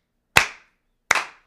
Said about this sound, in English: Can we give him a slow clap?